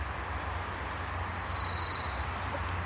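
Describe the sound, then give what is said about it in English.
A pine warbler sings one steady, even trill lasting about two seconds, clear over a low background rumble, with no voices. “So I'm grateful for the pine warbler.”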